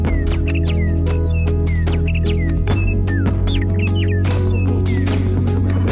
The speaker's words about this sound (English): Do you know why birds sing just before dawn? No, I don't. People believe it's to tell each other that they made it through the night.